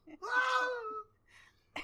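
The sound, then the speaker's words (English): A short, piercing Wilhelm scream: one loud, strained cry lasting under a second, wavering and sliding downward in pitch before cutting off, followed by faint noise and a brief burst at the end. “And they even added, like, a little tiny Wilhelm scream.”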